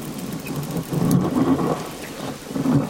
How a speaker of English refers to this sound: Not sure what it means, but that's the title of this underwater recording, featuring roaring seals and the distinctive navigating clicks and whistles of blue-nosed dolphins. It was recorded by … on Scotland's Moray Firth.